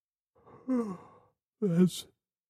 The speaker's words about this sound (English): That's a yawn